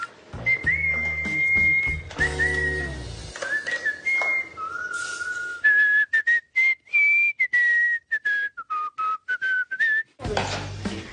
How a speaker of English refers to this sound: Was that you whistling? That was me. Was I whistling? Yes. What were you whistling about? I whistle when I'm happy, so I must be in a good mood.